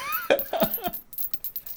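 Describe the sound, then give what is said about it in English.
A brief murmured voice, then small hard objects clatter and tick in a quick run of light clicks as dice tumble across a table to a stop. “Talking to the dice.”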